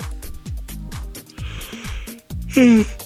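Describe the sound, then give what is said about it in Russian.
A loud, drawn-out yawn near the end, its breathy voiced tone sliding downward, following a stretch of steady, rhythmic low thumping pulses. “Это я тут зеваю, простите.”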